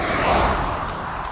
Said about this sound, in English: Car. Game on. For those of you who don't play road hockey, that's one of those things. We play hockey on the streets, and you have the nets out in the road